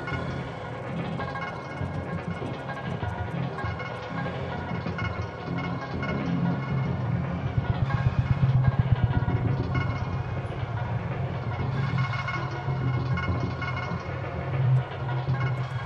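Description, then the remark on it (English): A thick, washy reverb drone from the Clouds module, using only its reverb, with heavy warbling modulation, sustained and fairly loud, with a rumbling low end and shimmering upper tones; no voices. “So, that's clouds doing its clouds thing with some crazy modulation.”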